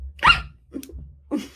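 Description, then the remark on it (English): A single sharp, loud sneeze bursts out abruptly, followed by a couple of softer, breathy rustles and exhales; no one speaks. “Bless you.”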